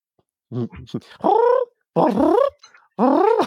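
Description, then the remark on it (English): A person mimics a cat, letting out three drawn-out, whiny meows in a row, each rising and then falling in pitch, loud, after a few short vocal bleats. “I forgot there was a cat fucking me.”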